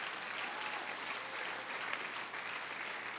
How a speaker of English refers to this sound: Come on, if you will, I want you to clap your hands.